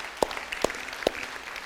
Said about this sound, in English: All right, woohoo! Everybody just clap for Landon.